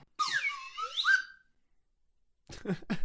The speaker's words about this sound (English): Wait, where's my slide whistle?